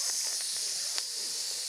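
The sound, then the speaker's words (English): A steady, high-pitched hiss runs unbroken through the whole clip, broad and airy like escaping steam, with a faint brief click partway through and no voices. “All right, so you relight the 4 candles, but you still hear the hissing noise, and everybody's safe versus poison.”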